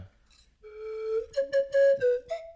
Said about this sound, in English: That's why that's a professional slide whistle.